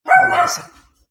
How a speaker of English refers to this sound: She's a vicious mini schnauzer with eight teeth.